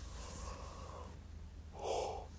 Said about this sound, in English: Oh, sorry, I've been yawning this whole time. bear with me, guys.